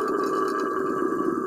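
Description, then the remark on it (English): A howler monkey lets out a loud, sustained guttural roar, a steady throaty drone that holds without a break for about a second and a half, with no voices. “Why do they call them howlers if they sound like panthers? Because, of course, that sounded like a panther.”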